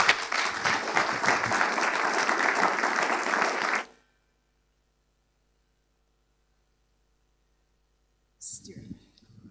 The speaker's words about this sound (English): Yeah, again, give them a round of applause as they step down. Thank you.